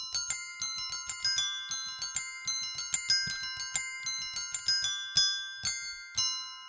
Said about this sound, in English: And Chester the Squirrel played the bells.